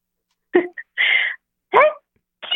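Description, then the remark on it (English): A caller from Memphis, Tennessee performs a four-part sneeze: four fairly loud bursts in quick succession, each separated by a brief pause, with the last one cut off at the end. “A sneeze like Dita Von Teese”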